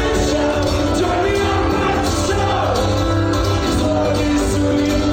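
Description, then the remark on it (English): A large crowd at a concert venue, recorded on a cell phone from the third level, sings along loudly with a live band, many voices blending into a dense, steady roar of melody over the music, with occasional shouts rising above it. “And you hear when it kicks in. Entire crowd singing.”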